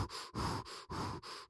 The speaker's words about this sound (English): And now that his heart race is... He's going to get his heavy breathing.